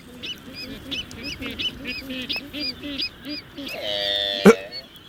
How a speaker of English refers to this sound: What? Whoa, did you hear that? Rappity tap, tap, tap. This is the black-footed albatross.